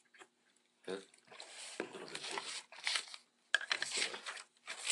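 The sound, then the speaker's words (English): Crackly bursts of paper being handled and crinkled, coming in several irregular bouts with short pauses between them, fairly loud. “I'm asking him for paper right now.”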